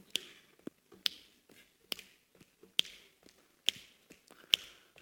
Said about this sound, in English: Now, I can see you clapping. Now, sorry, this is a cool song. You can't clap, you have to click your fingers, okay?